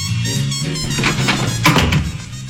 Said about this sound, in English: Deep within the dirty, stinking bowels of the Armstrong and Getty Information Complex. Michael, play the door opening.